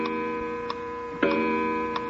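An old weight-driven mechanical clock, just wound by pulling its chain, ticks steadily, with sharp, evenly spaced ticks about every two-thirds of a second over a faint steady hum. It is moderately quiet, and no one speaks.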